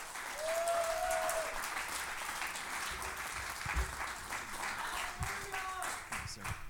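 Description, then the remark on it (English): An audience in a church claps steadily and loudly in the evening, a dense, continuous wash of many hands that holds its level throughout, with a few faint voices calling out underneath. “and clap.”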